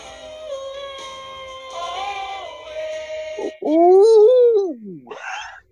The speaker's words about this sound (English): Hang on, my neighbor's husky just started screaming in the backyard.